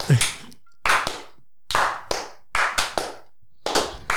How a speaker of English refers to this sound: Anyway, we'll give that a little clap, eh?